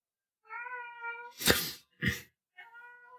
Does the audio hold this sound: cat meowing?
yes